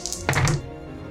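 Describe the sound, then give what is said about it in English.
Opalite dice clatter onto a table: a few light, high clicks followed by a single dull thunk as they land, then quiet. No one speaks. “Please, sweet, sweet Opalite dice. Be kind.”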